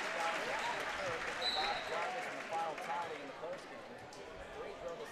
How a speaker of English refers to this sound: He might be done. Round of applause. And, yep, Elijah will. Standing ovation from some of the crowd. 26 points tonight for Elijah Hudson.